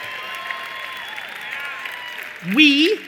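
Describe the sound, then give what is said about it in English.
A crowd applauds steadily for a few seconds, a dense wash of clapping with some whoops mixed in, before a single voice cuts in loudly over the tail of it. “Here's one that you won't clap up as much.”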